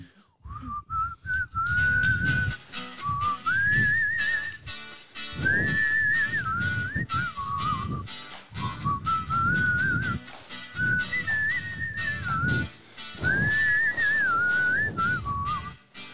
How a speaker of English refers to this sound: All right. Whistle along if you know the song.